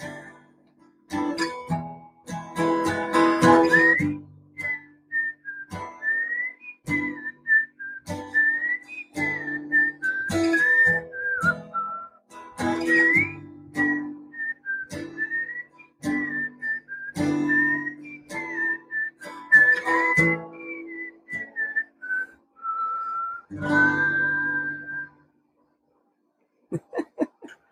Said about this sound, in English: Including the whistling in key.